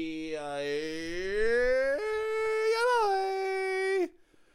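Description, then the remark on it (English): A dog whimpers, one long drawn-out whine that climbs in pitch and wavers for about four seconds before cutting off abruptly. “with me as always are the dogs.”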